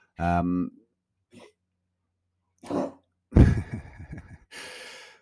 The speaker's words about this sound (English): Oh, dog just behind me having a furball.